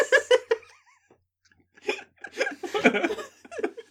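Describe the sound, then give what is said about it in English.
A person imitates an aroused cat with a voice: a burst of short, strained yowls and gliding meow-like cries, a brief pause, then a longer run of growly, breathy cat noises. “I can do more aroused cat noise.”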